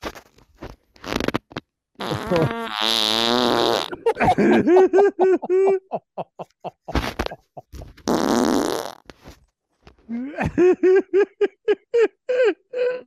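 A series of loud farts in the shower, some long and sputtering, others short and squeaky with rising pitch, broken by brief pauses and scattered clicks.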